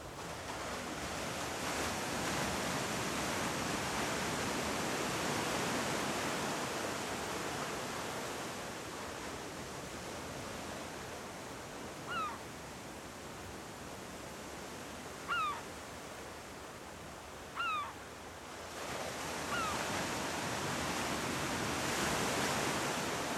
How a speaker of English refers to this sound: Allowing yourself to really be here by the ocean.